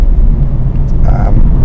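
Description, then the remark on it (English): Steady, loud low rumble inside the cabin of a Ford Focus Ghia while driving into work in the UK, continuous throughout, with a faint higher whine rising briefly near the middle. “A Rambling Drive Into Work”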